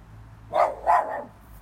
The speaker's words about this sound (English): Listen to that dog. He doesn't. I mean, like, he hears a noise. He goes and he investigates.